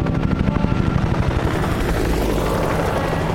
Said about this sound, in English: First the Happy Days guy gets a chopper, now you? I'd like to know why these helicopters keep showing up and why I can't fly out on one of them.